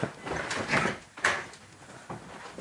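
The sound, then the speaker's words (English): A couple of dull knocks on a door, spaced about half a second apart, followed by quiet room noise with no one speaking. “And then there was a knock on the door.”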